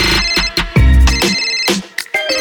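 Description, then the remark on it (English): A phone ringtone plays loudly, a bright electronic melody of quick repeating tones with a heavy low thump underneath, no voices present. “The other day, right after the text, your phone ring.”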